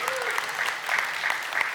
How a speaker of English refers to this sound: We've been married 43 years. Celebrated it just this last week. You can applaud, you know. Thank you.